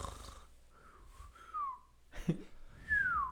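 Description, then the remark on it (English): Someone imitates a snore with their voice: a breathy wheeze and snort, then a thin descending whistle, repeated twice, fairly quiet, with no talking. “I feel like I remember there was one night I walked in there and you were snoring at the end of it. It was like, it was a little whistle at the end of yours.”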